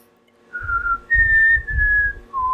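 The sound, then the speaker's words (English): A person whistles the short four-note Mockingjay tune from the Hunger Games films, each note clear and held: a middle tone, two higher ones, then a low closing note. Fairly loud, with breathy rumble underneath. “And I feel like for that, I did the whistle of the Mockingjay little thing.”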